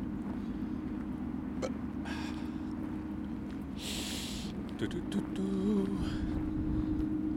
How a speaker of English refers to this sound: That's the boat. That's the one that brought me here.